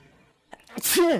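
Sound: a sneeze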